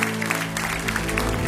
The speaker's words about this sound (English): You believe that? If you believe, give him a hand clap right now.